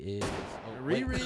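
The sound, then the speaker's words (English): A couple of sharp, booming gunshot sound effects played from a soundboard fire in quick succession, loud, layered over a tonal, humming background with some voice-like sound. “He's shooting everybody.”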